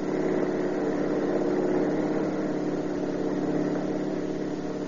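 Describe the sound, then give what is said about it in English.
A car engine roars steadily at high speed during a car chase at over 70 mph, a loud continuous drone with a rumbling low hum and no pauses, filling the whole stretch with no voices. “We're doing over 70 and he's walking away from it.”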